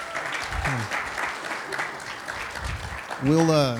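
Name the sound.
audience hand clapping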